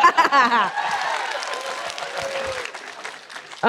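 An audience breaks into steady applause after a brief vocal cheer, the dense clapping holding at an even level for about three seconds with faint whoops mixed in before it cuts off.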